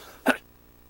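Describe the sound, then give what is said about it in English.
A single sharp cough from a speaker reading scripture during a sermon, a short loud burst with a rough, breathy quality, followed by quiet with no talking. “Excuse me, I'm going to have to cough here.”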